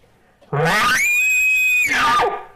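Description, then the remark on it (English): A voice imitates an elk's challenge bugle: a raspy low start that climbs into a loud, sustained high-pitched scream, then drops back down with a gravelly finish, about two seconds long. “The challenge bugle or scream is exactly what it sounds like.”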